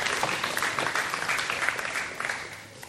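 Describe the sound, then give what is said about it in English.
A round of applause from a small group for a woman's reading of Psalm 23, dense overlapping clapping that holds steady for a few seconds and then gradually fades. “I think she gets a round of applause for that, don't you think?”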